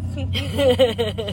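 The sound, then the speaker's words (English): A steady low engine rumble fills a car's interior, heard from the backseat, with a person's voice talking over the constant road drone at the end of a trip to Frozen Freddy's. “reporting live from backseat of favorite's car.”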